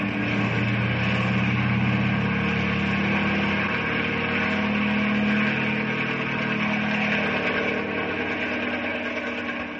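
A helicopter engine runs steadily throughout, a dense mechanical drone with a low, slightly wavering hum beneath a broad whine, staying loud and even with no voices. The helicopter is flying by a mountainside while supplies are lowered by winch.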